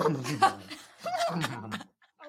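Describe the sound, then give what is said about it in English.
A person imitates a horse's whinny with a run of breathy, wavering vocal bursts that sound almost like laughter, then pauses before one short final sound. “Start it out with a horse noise?”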